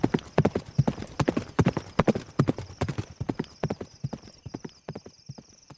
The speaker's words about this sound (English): And picks up Gilly's limp body and throws Gilly on Rusty's horse, jumps on, and says, "Yeah!" and takes off.